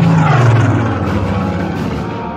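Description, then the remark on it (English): A propeller plane, a Spitfire, roars overhead by a windswept cliff in Normandy, France, its loud droning engine note sliding downward in pitch as it passes, with no voices. “cliff in Normandy, France, a small black radar dish detected an inbound aircraft.”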